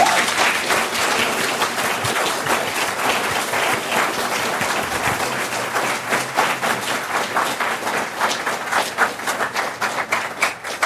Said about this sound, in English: And to begin with, I do want to thank our very generous donors who make Mises University possible. Please join me in giving them a well-deserved round of applause.